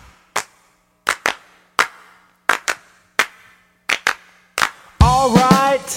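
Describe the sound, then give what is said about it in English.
Hands clap about ten times in a steady beat along to a song, some in quick pairs, over a quiet background, before a loud sung melody with music bursts in at the end. “Now everyone clap.”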